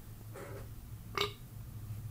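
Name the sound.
burp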